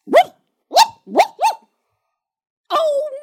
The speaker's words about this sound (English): Oh my, what's that dog doing? Come away from that window, Dusty.